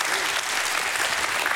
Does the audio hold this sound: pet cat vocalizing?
no